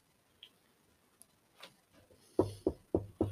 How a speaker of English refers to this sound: It was a knock at my door. Yo, about 1:30 in the morning, it was a knock at my door.